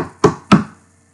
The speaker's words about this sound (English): That was like five taps. I can't count.